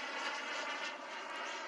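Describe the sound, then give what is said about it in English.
A remote-control model airplane engine buzzes steadily overhead as the plane does little barrel rolls, a continuous, fairly loud whine with no pauses and no voices. “He's doing little barrel rolls. Looks sketchy. It even sounds so real.”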